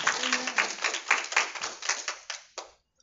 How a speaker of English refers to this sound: Now, if you believe that tonight, just give the Lord a good hand clap of praise. Amen.